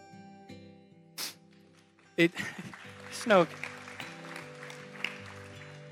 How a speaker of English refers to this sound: Clapping's not necessary.